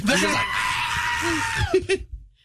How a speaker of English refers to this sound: That's the goat scream.